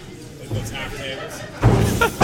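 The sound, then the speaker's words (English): A quiet, muffled stretch gives way to one heavy thud of a linen closet door being banged shut, with a short rumbling tail and a faint voice-like murmur underneath. “Yep, that's definitely a linen closet door.”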